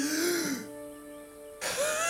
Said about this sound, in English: And you begin wheezing and coughing.